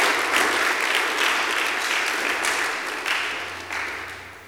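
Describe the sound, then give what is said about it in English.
A church audience claps together during a sermon at the preacher's call, a dense, sustained burst of applause, steady and fairly loud, with a few stronger surges before it gradually thins and softens. “Clap your hands if you hear what I said.”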